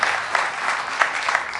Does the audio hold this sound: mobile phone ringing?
no